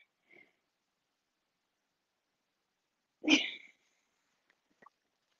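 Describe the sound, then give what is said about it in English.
The speaker's own dog lets out one short, sharp bark, with a couple of faint clicks and rustles around it. “I'm going to kill my dog.”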